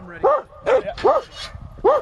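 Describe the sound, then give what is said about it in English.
Dogs lined up at the tailgate of a truck, beside officers with guns for rubber bullets and firecracker shells, during the release of a bear from a culvert, bark loudly: four sharp, tonal barks spaced unevenly over two seconds, with a faint murmur of activity in between. “We make sure that the shooters are on the far ends of the lineup of dogs.”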